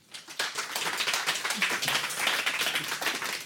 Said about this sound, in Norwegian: Giv ham en varm applaus.